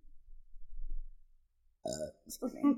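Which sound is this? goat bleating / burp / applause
burp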